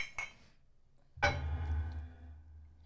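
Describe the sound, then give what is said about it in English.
A couple of light clicks, then a sharp, bright clink of glasses tapping together in a toast, tapped like a shot, its ring fading over a low rumble. Fairly loud, with no talking. “Did you tap it like it was a shot?”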